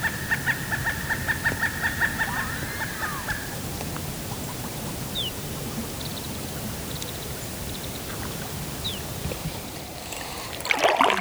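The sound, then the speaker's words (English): A common loon's wavering, rapidly pulsing call rings out for a few seconds, then fades; three loons are diving on a lake in Sylvania Wilderness in the Ottawa. Steady lapping water and faint bird notes continue, with a brief clatter near the end. “And while most of those birds remained unseen during my visit, I was greeted by three loons busy diving beneath the water surface.”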